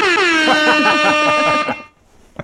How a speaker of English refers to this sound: I just have an air horn.